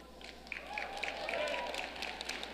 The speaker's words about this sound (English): That was a shitty ass clap. And let me tell you why it's a shitty ass clap.